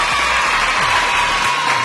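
A loud, continuous burst of applause with crowd cheering mixed in, a dense wash of clapping that fills the whole two seconds without pause.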